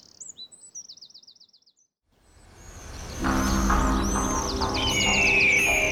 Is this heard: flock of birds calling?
yes